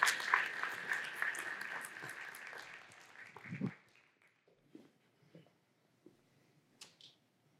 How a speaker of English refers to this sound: So we're going to invite them to the stage and why don't you give them a round of applause as they come forward to share with us here today.